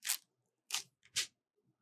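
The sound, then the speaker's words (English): Three short, harsh crinkling rips as a plastic food pouch is torn open at its tab toward the zipper, coming in quick uneven bursts with brief pauses between them and no one talking. “Wherever you tear in the tab, tear it towards the zipper.”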